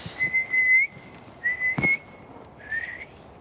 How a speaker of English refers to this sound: No, you would actually use a whistle. Like real whistle and go.